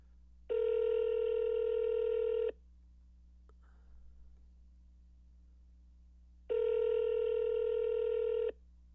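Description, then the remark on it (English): A phone line rings out twice on a call, each steady electronic ring lasting about two seconds with a quiet gap of several seconds between, heard clearly with no one talking. “So we're going to call Brooklyn Heights to see if she'll pick up and say, oh my God, and say hello to me.”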